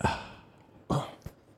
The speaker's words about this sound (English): I just burped off mic, so that wasn't fully ASMR with it.